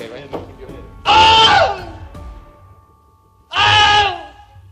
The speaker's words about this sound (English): But it turns out there were actually six takes of the scream. A man getting bit by an alligator and he screams.